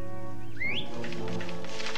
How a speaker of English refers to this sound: I heard something. Oh, just a bird? A bird. A large green bird. Ready to catch a couple of worms.